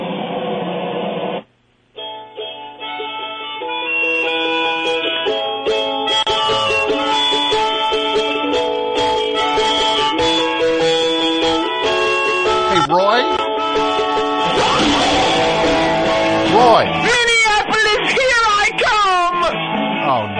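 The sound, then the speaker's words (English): Band music plays from a cassette, sounding thin and band-limited at first, then fuller, with sustained tones and a wailing, wavering vocal that bends up and down in pitch. “Oh, cool, you got a cassette player. Wanna hear the best band in the world?”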